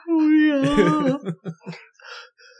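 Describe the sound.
A person vocally imitates a dying cat with a long, strained, wavering wail that breaks into a few choppy yowls, then trails off into faint breathy noises.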